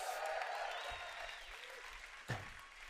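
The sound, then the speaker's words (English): A crowd applauds with a steady wash of dense, crackling clapping that gradually thins out, with a sharper clap or thump near the end as it fades. The audience is applauding themselves. “Let's give yourself a round of applause for that.”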